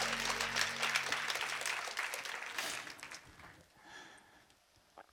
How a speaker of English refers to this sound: Clap your hands if you're ready for God's word, everybody.